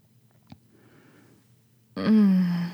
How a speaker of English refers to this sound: Some more yawning.